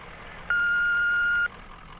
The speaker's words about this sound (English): Leave a message after the beeps.